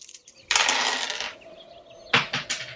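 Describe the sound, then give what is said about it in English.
Dice rolled for fall damage in a tabletop game clatter and rattle across a hard surface for nearly a second, followed after a pause by a few sharp clicks and bounces as one tumbles away off the table. Fairly loud, with no voices. “That one went away. I have a backup.”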